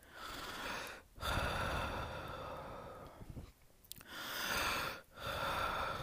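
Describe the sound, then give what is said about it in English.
A voice imitates heavy breathing heard in one's ear: three long, rasping breaths with short pauses between them, loud. “And I heard a breathing in my ear. And I'm going to try and recreate it.”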